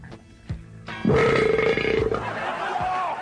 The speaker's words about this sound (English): We have a fabulous belching contest. We have a belching contest. Okay, listen to this. Check this out.